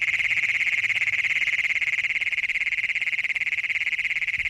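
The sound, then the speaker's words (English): Great Plains toads (Bufo cognatus), adult males giving advertisement calls, recorded near Wilcox, trill without a break, a loud, shrill, rapidly pulsed buzz held steady at a high pitch for the whole stretch, with no voices. “These so-called advertisement calls by adult males hoping to find a mate were recorded near Wilcox”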